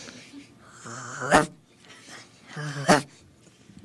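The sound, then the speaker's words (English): A child's voice imitates a dog, giving two loud, sharp woof-like barks about a second and a half apart, each with a short breathy lead-in. “What does a dog sound like?”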